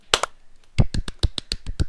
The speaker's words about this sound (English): The worst clapping I've ever heard. You guys are terrible.